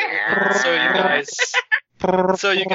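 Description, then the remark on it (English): A voice imitates a dial-up modem connecting, with buzzy, warbling tones and quick chirps, a brief pause, then more harsh screeching warbles, loud and without any real words. “Modem connection sound.”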